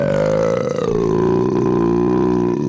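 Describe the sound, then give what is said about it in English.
One long, loud, drawn-out burp after drinking a ranch water, holding a low croaky tone for nearly three seconds with a slight downward slide before cutting off. “Less burpy than I normally am on a ranch water.”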